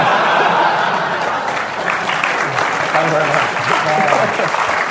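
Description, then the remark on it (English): A live audience claps steadily and fairly loudly, a dense crackle of many hands throughout, with a voice briefly audible beneath the applause. “Don't clap Richard Keys.”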